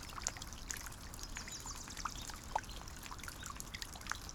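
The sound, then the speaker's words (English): Water drips from moss drapes hanging over everything (not raindrops), landing at irregular intervals, some sharp, others softer, over a faint steady background wash of trickling water in a quiet outdoor setting. “These are not raindrops. These are drips from the moss drapes that hang over everything.”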